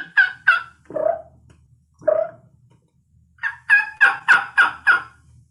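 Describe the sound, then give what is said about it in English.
A person imitates the gobble of a big tom turkey out in the field with their voice: two quick high yelps, two lower throaty notes, then a loud rapid string of about five gobbling bursts, with no talking. “This is like a big Tom out in the field.”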